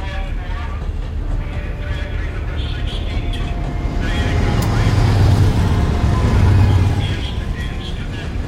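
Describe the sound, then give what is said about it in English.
A train rolls along at night, dark outside, with a steady low rumble and rattling hum that swells louder for a few seconds in the middle before settling back. “Dark outside, and there's something about being alone on a train at night that's always felt a little foreboding to me.”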